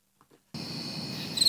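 Crickets chirp in a steady, high-pitched drone that starts abruptly after a brief silence, with a few louder, sharper chirps near the end over a soft night-ambience hiss.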